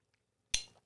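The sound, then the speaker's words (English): A single bright clink of wine glasses touching in a toast, crisp, with a short ringing tail that fades within a moment. No one speaks. “A toast to our newest patrons. Cheers”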